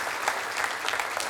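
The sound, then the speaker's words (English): A church crowd applauds the fathers on Father's Day, steadily, a dense wash of many hands clapping at an even, sustained level with no voices heard over it. “One more round of applause for you.”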